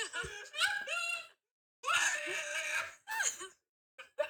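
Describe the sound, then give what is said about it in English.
A man in a played video, holding a teddy bear, screams and wails in anguish about someone dying, in three long, loud, strained bursts separated by short pauses, with a brief final cry; no clear words are spoken. “Him screaming about someone dying in Teen Wolf.”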